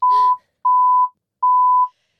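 A loud, steady censor bleep tone sounding in a regular on-off pattern: three long beeps with short gaps, a fourth starting at the end, and a brief clipped burst at the start.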